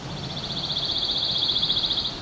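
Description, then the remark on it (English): A pine warbler in a red pine next to Highway 6 sings a steady, even trill of rapid high-pitched notes, held for about two seconds over a low, constant rumble of background noise from the highway's intermittent traffic. “to hear this pine warbler.”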